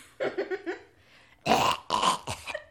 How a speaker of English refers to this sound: And you can hear coughing.